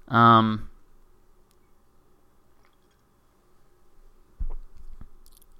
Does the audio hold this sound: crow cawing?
no